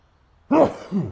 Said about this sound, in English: Got to sneeze. Oh dear.